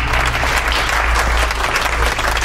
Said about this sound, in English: I'm so proud. So Dawn comes up to the stage and applauds this.